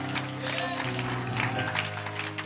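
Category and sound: crowd, audience hand clapping applause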